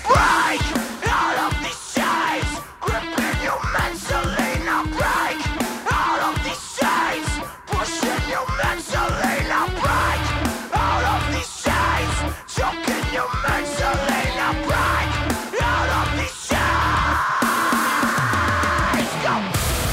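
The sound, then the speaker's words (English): A loud nu metal track plays continuously, with heavy distorted guitars, pounding drums and a shouted, yelling vocal that drops briefly between hard-hitting sections. “Why do I hear the fine tones of nu metal?”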